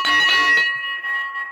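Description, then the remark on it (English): A handheld victory bell is clanged a few quick times, its bright metallic ring lingering and slowly fading afterward. No one speaks. “Here we go. Victory bell time.”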